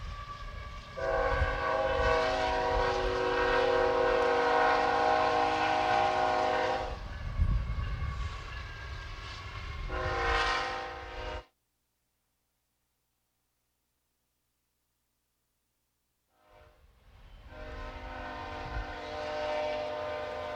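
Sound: train passing with horn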